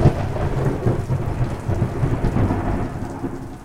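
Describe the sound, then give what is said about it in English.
A loud crack of thunder from a second lightning bolt striking climbers on a ledge during a rappel opens into a deep, sustained rumble that rolls on under steady heavy rain, with no voices. “Dan was actually starting to ascend the rappel when a second bolt struck.”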